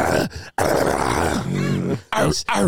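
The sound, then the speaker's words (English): A person imitates an animal growl with a few loud, rough, throaty bursts, separated by brief pauses. “Growl. Growl. Growl your head off.”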